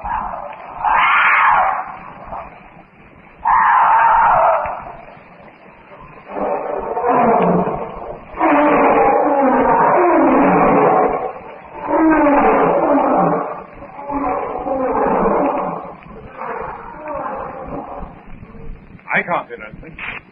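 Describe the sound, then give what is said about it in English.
Jungle beasts, among them Sabor, Eta and Numa, roar and wail in a series of loud, drawn-out bursts, some rising and falling in pitch, overlapping one another with a thin, muffled tone throughout. “I must admit that outside the various jungle beasts, I can hear nothing.”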